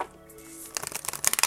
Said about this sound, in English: But anyways, let's go ahead and get into it. I'm shuffling the cards here, y'all.